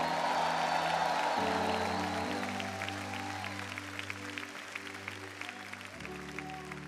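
An audience gives God a shout of praise, clapping and cheering in a dense, roaring wash that is loudest at first and gradually thins into scattered clapping, with steady keyboard chords sustained underneath and shifting pitch midway.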